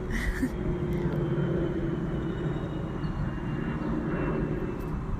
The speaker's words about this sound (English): Sorry, there's a plane.